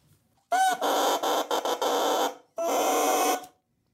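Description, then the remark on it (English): A bare double reed, two pieces of wood with the tip cut off, blown alone by mouth, gives two loud, buzzy, squawking bursts: the first long and choppy with brief breaks, the second shorter and steady. It sounds much like a duck call. “This is what a reed sounds like on its own.”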